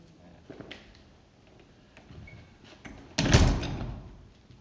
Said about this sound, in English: I'm watching people watch the door fly, going backwards and forwards, so I just get rid of the distraction.